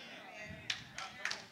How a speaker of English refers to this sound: You see, only a couple. See, everybody who's not clapping, afraid to come out.